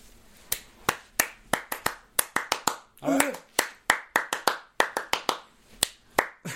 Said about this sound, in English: you were just going to keep clapping until you came up with something.